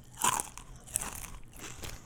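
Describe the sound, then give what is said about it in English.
Crisp Miss Vicky's potato chips being crunched and chewed, with a loud first bite followed by a few quieter, irregular crackling chews over about two seconds, no talking. “Miss Vicky's never tasted so good.”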